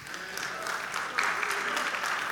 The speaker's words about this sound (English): Yeah, some of you are half clapping and you have reason.